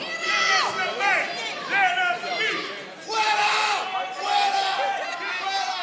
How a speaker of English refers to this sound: He looks out at the crowd as people begin pointing at him and screaming.